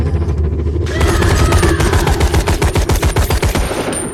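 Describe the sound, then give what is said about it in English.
Rapid rifle fire in a film scene, a woman firing her rifle at a humanoid, rings out in a fast, steady burst of loud cracks after a second of low rumbling, with the shots rattling on and tapering slightly at the end. “She raises her rifle. She screams. She fires.”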